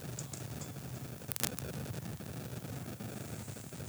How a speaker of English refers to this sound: I'm just getting a lot of interference right now.